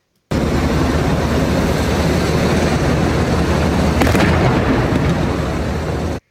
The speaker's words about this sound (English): So they're lighting stun grenades or something. Dude, they gotta have their fun out there. Crowd control devices.